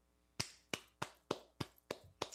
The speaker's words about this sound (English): That is a round of applause.